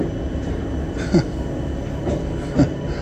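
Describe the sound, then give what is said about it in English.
A train departs from a station platform with a steady rumble, broken by two brief metallic clunks about a second and a half apart, as a man in an orange jacket misses it. “Sorry, listeners, I've just noticed somebody missing the train.”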